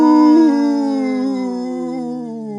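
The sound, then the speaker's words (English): After a count of three, people imitate a cow's moo together in one long, steady, drawn-out voiced note that sinks slightly in pitch as it fades over about two and a half seconds, loud and alone. “It's that similar because it's like emptying your lungs almost with the moo.”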